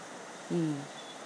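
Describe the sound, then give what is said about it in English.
Soft, steady rain hisses evenly throughout, a continuous wash of gentle patter with no breaks, briefly joined midway by a short low voiced sound. “Can you hear the rain?”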